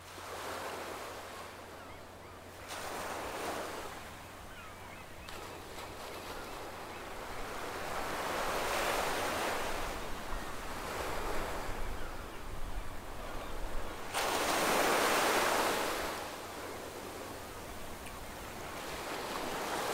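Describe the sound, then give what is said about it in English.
Ocean waves wash onto the shore in slow, repeating surges, each swelling into a broad hiss of surf and receding, with a steady low rumble and light wind underneath and no voices. “And here we feel the ocean's call to listen deeply to the body.”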